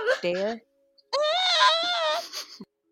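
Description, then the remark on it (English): A voice imitates a terrified scream: a short wavering cry, a brief pause, then a long, high-pitched wail that holds steady before trailing off. “Then Gwen let out a terrified scream.”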